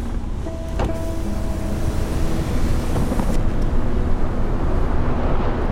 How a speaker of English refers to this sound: Breathe in, relax. Listen to the ocean. We all started there under the waves.